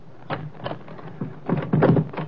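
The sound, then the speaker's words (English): A door is unlocked and opened: a run of sharp metallic clicks and knocks, then a louder cluster of clunks and rattles as it swings, with no voices. “Wait a minute till I unlock the door.”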